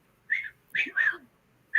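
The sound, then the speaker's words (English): A person whistles a short up-and-down call several times, imitating a whistle heard while sitting on a bank, with brief pauses between the clear, moderately loud, bird-like notes. “And it was doing that, I'd hear just a little up down whistle.”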